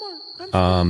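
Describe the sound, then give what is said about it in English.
A steady, high-pitched cricket chirp at night, added as a sound effect in a studio, runs through the whole moment, partly covered by voices and a loud humming voice in the second half. “We've added some sounds.”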